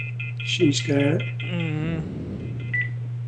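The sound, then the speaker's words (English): A small phone in an office rings with a short electronic ringtone, a few bright tonal beeps followed by a warbling tone, over a steady low electrical hum. “I think you left your phone on.”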